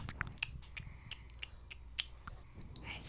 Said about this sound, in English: Why are you eating the microphone, kid? Don't bite it. Don't bite it. Now my son is just chewing on microphones, if you can hear him. Microphone chewer.